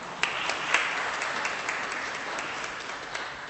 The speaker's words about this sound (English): I'm sorry, but boy, fantastic. Fantastic. You can applaud for him too if you'd like.